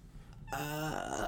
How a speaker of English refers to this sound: Salmon burp. Ew. Sorry.